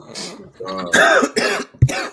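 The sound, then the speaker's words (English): A series of loud, harsh coughing bursts in quick succession, ending with a sharp low thump as the coughing person knocks against and breaks the microphone. “He coughed so hard he broke the mic.”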